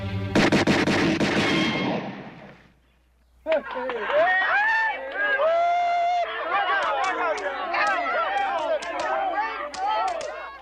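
A rapid volley of loud gunshots cracks out for about two seconds, then a brief hush before a crowd erupts in excited shouting and cheering that carries on to the end.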